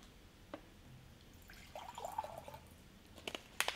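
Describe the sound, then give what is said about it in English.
Water, about 1 1/3 cups, trickles and splashes into a freeze-dried fried rice meal pouch, a quiet, uneven pour with a few sharp clicks and crinkles near the start and end. “So it looks like we need another 1 1/3 cups of water.”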